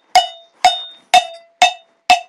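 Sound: cowbell being struck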